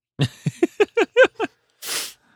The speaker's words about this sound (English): Like, I'm going to sneeze.